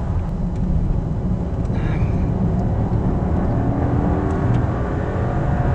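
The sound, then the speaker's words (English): A hybrid car's engine hums steadily, a low continuous drone as the vehicle accelerates and the petrol engine kicks in, with road noise underneath and a brief rising whine partway through. “Oh, I think the petrol engine's just kicked in as I accelerated there.”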